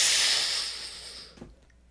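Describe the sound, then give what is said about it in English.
A voice imitates the hiss of a scanner at a new job that scans people and sniffs them for alcohol as they walk through: one steady, sharp breathy hiss lasting just over a second, gradually softening, then cut off abruptly with a faint puff before quiet. “it scans us and makes sure we're okay. Sniffs us for alcohol. When you walk through, you hear it go.”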